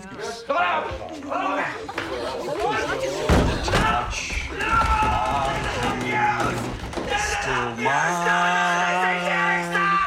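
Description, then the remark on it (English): A door slams shut once, a loud, sharp thud partway through, as a man closes the door and holds it shut to keep singing at a professor; voices and warbling, off-key singing carry on before and after the bang. “He like closes the door and holds it closed so he can keep singing it at the professor, who is like going apoplectic.”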